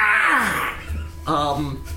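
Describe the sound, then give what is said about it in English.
A voice imitates a boy witch character's scream: a strained, loud vocal cry that slides downward in pitch, followed after a short dip by a second wavering, wailing burst. “The boy witch opens his mouth, and a scream comes out.”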